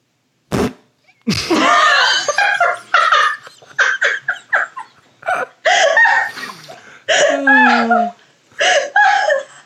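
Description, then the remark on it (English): A loud series of sputtering mouth fart noises, a dozen or so quick bursts in an uneven rhythm, voices imitating flatulence with buzzy, wavering tones and bits of giggling mixed in. “We're good at fart noises.”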